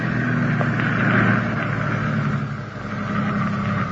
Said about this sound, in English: There's a dirt road just ahead on the left. Will you drive the ambulance in there and park?